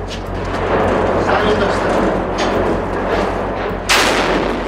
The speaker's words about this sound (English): Moments later, another volley of rockets. Everyone scrambled to take cover under a stairwell.